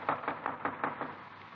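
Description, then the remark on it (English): A quick series of about six firm knocks in a steady rhythm on the front door of a house at 896 Duane Street at 10:42 a.m., then a pause with only faint background noise. No one speaks. “Front door.”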